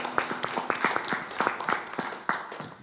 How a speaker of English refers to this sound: Can we just give our dads a big round of applause this morning?